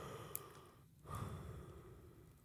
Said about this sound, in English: Oh, thanks well, for yawning.